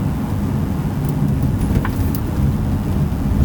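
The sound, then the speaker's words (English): A car drives steadily along the road in traffic, its low engine and tire rumble filling the whole stretch at an even, fairly loud level, with no one talking. “Yeah, well, once we get out there in the traffic, they'll get a good view.”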